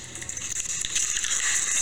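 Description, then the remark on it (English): Water splashes onto a person's face in a continuous hissy, crackling rush lasting a couple of seconds, bright and fairly loud, steadying toward the end with no voices. “Not every day you get water or some kind of liquid splashed on your face.”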